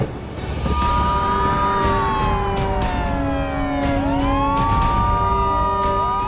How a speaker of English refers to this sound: And then there's this huge blast of sirens as this one lawman car alerts all of the others around.